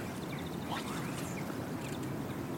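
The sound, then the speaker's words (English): Greenfinches sing by the water where people are fishing, a run of quick repeated twittering notes mixed with rising wheezy calls, faint above a steady low outdoor rumble of wind and water. “where that green finches are singing away, wheezing away.”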